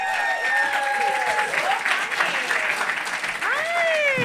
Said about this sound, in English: Ladies and gentlemen, start clapping right now. Get that energy up for Melanie Vesey.